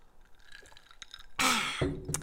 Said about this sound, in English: Cheers, everyone. Now everyone must listen to the ASMR of ice. Yes. Which I feel like is a faux pas on podcast.